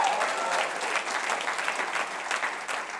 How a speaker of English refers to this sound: When it's time to clap, let's not give a PGA clap. Come on. That's not generous. We're WWE kind of people around here. Come on. Let me hear you give the Lord a good hand clap.